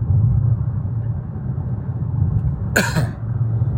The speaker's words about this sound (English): Still got a little bit of that cough I was telling you about.